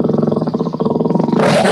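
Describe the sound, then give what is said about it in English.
A tiger roars loudly, a deep rumbling, throbbing growl that swells into a harsh, raspy blast near the end, with no talking. “Don't piss off the tiger.”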